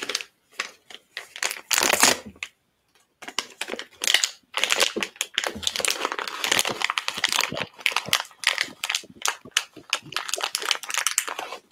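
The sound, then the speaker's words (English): Crinkly plastic crackling and rustling as someone wrestles with a snack bag, a long run of sharp, irregular crunches and crumples with a brief pause early on, fairly loud throughout. “Do I always have trouble getting that bag open?”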